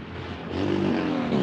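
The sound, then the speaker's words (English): A motorcycle passes outdoors, its engine a loud, rising buzz that swells over about a second and a half with no voices over it. “A motorcycle.”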